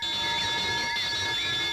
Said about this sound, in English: Ah, the birds are chirping. That's a dinner bell. The dinner bell's a chirping.